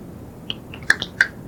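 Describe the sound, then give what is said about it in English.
A few quick finger snaps, two or three crisp clicks in close succession, with some softer ticks before them against a quiet background. No one speaks. “And snap your fingers and hold the space about 1 cubic half inch right in the middle of the palm of your hand.”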